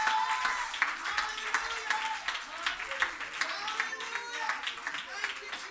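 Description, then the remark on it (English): An audience claps hands in a steady, dense burst of applause lasting several seconds, with scattered voices and cheers rising over the clapping, as members stand up to "fire their arrows". “Somebody clap your hands, because how many arrows are flying now?”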